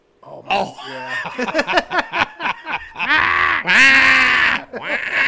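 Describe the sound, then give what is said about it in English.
Goats scream over and over, a rapid string of short, harsh bleats building into longer, shrill, strained wails, loud with no talking. “or the fact that they were, when he first received them, they were doing that the whole time.”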